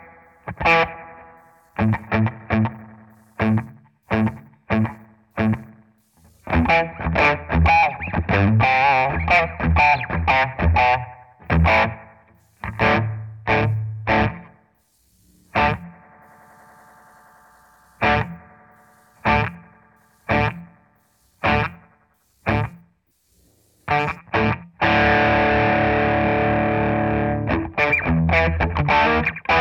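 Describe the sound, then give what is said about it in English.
Electric guitar played alone with a short slapback single delay effect, choppy strummed chords and sharp stabs separated by brief gaps, with a few sustained ringing passages, loud throughout. “So that's just the slapback setting with the single delay.”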